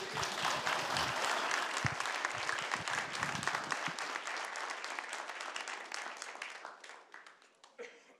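An audience applauds to welcome a speaker, a dense, steady wash of many hands clapping, loud at first and gradually thinning and fading over about eight seconds.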